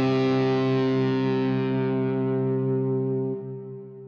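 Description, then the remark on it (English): The theme song of Garry's TV sitcom show ends on one heavily distorted, sustained chord that rings out loudly, its bright edge slowly dulling before it drops a little at the end. No one speaks. “That theme song, this is the theme to Garry's show.”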